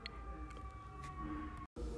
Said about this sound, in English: I hear more sirens. I thought we was done, guys. I swear.